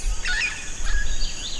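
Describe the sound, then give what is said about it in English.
Birds and howler monkeys wake at dawn in the Amazon rainforest, heard from atop a weather station at a remote Amazonian research station: a few bright, rising whistles and chirps over a steady hiss of insects and a low background rumble; no voices are heard. “The birds and howler monkeys are waking up.”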